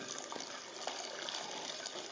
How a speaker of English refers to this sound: If I pour all the milk all together, I'm going to get what my grandmother would say, crema impazzita, so like crazy custard, scrambled eggs. So let's pour the milk in a thin stream, and in the meantime, whisk.